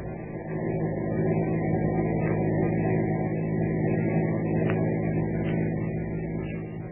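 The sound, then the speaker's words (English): A car engine hums steadily as the car drives along a road following a truck on the route to Overton, a continuous low rumble at an even, moderately loud level with no voices. “Keep on the tail of that truck. Right, sir. Not too close.”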